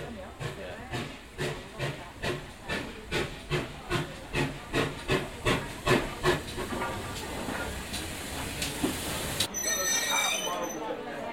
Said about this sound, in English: Our 12:15 service is just approaching. Please stand back from the platform edge as he comes into the station, just in case somebody opens the door. Stand back from the edge of the platform.